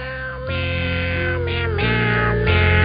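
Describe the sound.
A man sings Christmas carols entirely in cat-like meows, each note a drawn-out mewing syllable over a steady backing accompaniment, loud with no spoken words; from a Christmas album on a limited-edition CD.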